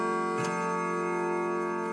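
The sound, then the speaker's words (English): A clock ticks against a steady, sustained ringing tone, with one sharper tick standing out near the start; no one speaks. “The quarter was so long that he was more than once convinced he must have sunk into a doze unconsciously and missed the clock.”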